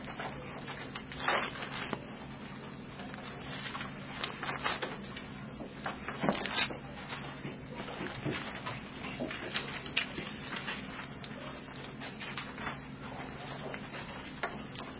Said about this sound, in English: Mark 11. Get all there. I still see the pages turning.